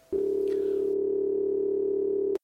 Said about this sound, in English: The number is busy. I'll hang up and try again. Here it goes. It's ringing.